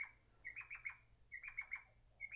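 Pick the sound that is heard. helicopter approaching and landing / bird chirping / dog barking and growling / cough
bird chirping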